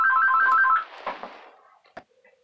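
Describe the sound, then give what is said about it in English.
A phone ringtone sounds briefly: a quick electronic warble alternating between two pitches for under a second, then a noisy fade with a sharp click near the end. No one speaks. “We're back from the phone call.”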